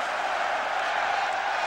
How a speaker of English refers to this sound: Good applause for the losers from Luton Town